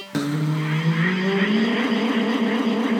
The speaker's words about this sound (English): I thought I heard some beeps and a whoosh.